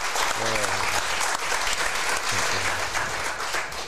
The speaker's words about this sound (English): Wonderful. Applause to you guys.